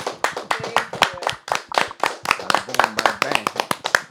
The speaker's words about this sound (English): Can we clap it up for a season finale, y'all?